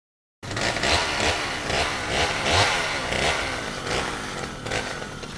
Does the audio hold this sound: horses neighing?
no